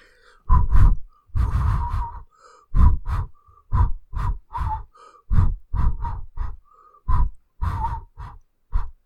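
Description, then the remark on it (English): Someone tries to whistle, producing a long run of short, breathy puffs of air with only a faint hint of a tone, in an uneven rhythm with no talking. “I'm trying to learn how to whistle.”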